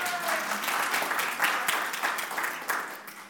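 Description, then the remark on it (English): A large group claps together in sustained applause for Jesus, a dense, steady wash of many hands, with no voices standing out. “Hand clap for Jesus.”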